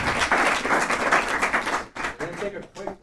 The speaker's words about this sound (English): All right, so we're going to wrap up our Q&A there, and we're going to give a virtual applause for the people tuning in online and a round of applause for our speakers here.